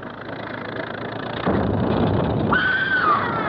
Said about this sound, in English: What was that? What was what? Didn't you hear it? Somebody screamed.